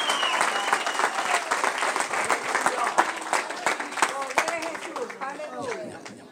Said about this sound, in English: Vamos, si le va a aplaudir, apláudale. Come on, if you're going to applaud for him, applaud.